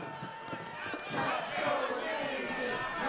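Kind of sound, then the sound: crowd, angry crowd shouting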